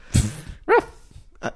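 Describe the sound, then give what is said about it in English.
A person imitates a dog barking: three short, sharp bark-like yelps spaced apart, the middle one loudest, with no other talking. “If you want to bark like a fool and let people know you're into pup play, that's okay.”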